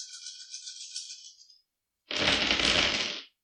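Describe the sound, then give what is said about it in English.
A handful of dice rattles and shakes, then, after a brief pause, spills and clatters loudly across a table in a dense burst of clicks lasting about a second, rolled for damage during a tabletop role-playing game. “All of us need bigger hands for this many dice.”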